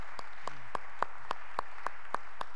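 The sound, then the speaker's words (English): Applause for the two organizers of a 25th anniversary celebration, made of about nine sharp, evenly spaced claps in a steady, brisk rhythm, each a crisp slap, moderately quiet, with no voices over them. “They were the, yeah, give them a great big round of applause as well.”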